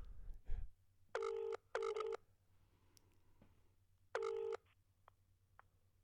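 An outgoing phone call rings out: a short double ring, a pause, then another ring, steady electronic tones heard through the handset, with a few faint clicks and no talking.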